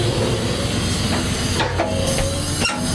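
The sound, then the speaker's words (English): A freight train locomotive, recorded from on board the engine, rumbles steadily as it gets moving, its deep droning engine tone layered with constant loud hiss and a few brief metallic squeals, with no talking. “I'm on the engine.”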